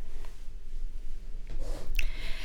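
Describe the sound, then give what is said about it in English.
A male producer lets out a loud, breathy yawn in the second half, a rushing airy exhale with a brief snort-like catch near the end, with no talking. “Our producer just did a loud yawn, and I wasn't sure if it meant that it was time to wrap it up.”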